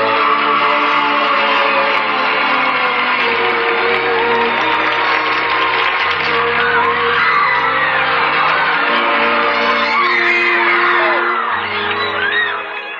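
A large crowd of girls screams nonstop for matinee idol Van Johnson, a loud, dense wall of high-pitched shrieks and whoops that swells and holds for the whole stretch, with a low musical drone faintly underneath.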